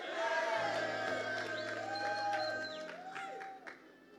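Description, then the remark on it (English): A crowd applauds steadily for about four seconds in appreciation of church elders and pastors, a dense wash of clapping with scattered cheers and voices mixed in, fairly loud, easing slightly near the end. “Can you appreciate them? Clap for them.”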